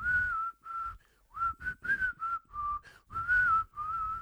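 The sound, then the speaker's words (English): A person whistles a short melodic tune, with clear pure tones in a series of phrases separated by brief pauses, no talking. “I love to whistle. I whistle all day long. I whistle songs.”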